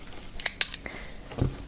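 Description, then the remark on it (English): Two quick, soft hissing spritzes from a small 30-day-supply perfume bottle, sprayed as it is and then opened up, followed by a faint click and a dull low thump, with no voices. “You can spray it like this, or open up.”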